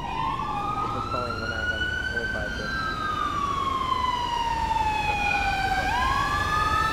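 An ambulance siren wails loudly in one long, slow sweep, climbing in pitch and then gliding back down, over a steady rumble of engine and road noise.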